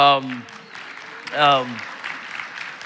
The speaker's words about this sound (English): We're probably going to clap our hands and we're going to clap our hands to this. Happy 9th anniversary, City Church.